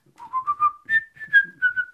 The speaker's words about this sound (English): I can whistle. Basically. I can do you like a whistle. Yeah, but that's it.